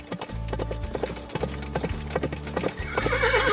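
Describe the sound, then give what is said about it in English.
Steady horse hooves clip-clop in a quick rhythm as a horse approaches from the distance in a cloud of dust, followed by a loud, shrill whinny near the end. “Soon in the distance, they can see a horse approaching in a pile of dust.”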